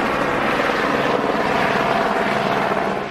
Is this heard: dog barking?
no